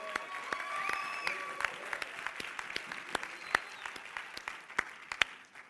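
A church audience, taking their seats, claps together in a steady wash of many hands to thank a member for cooling the building, with sharper individual claps popping out above the crowd and a few faint whistle-like tones early on.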